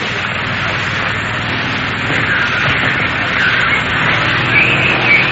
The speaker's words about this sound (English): Anyway, here come the helicopters, and they are now heading for the prison. One of the large army helicopters now going overhead and over the wall into the prison.